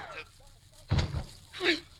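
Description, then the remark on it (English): A single loud gunshot, as one man shoots another, cracks out with a heavy, booming low thud that dies away quickly, followed a moment later by a short, higher-pitched burst of sound. “He shot him.”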